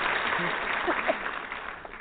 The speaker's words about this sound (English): You got the applause, Julie. Gary did not.